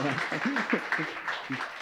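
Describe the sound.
An audience applauds steadily throughout, a dense wash of clapping while a voice speaks over it.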